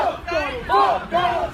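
A crowd chants together, led by one person, in loud, rhythmic unison, voices rising and falling in repeated drawn-out shouts with a strong, raw edge.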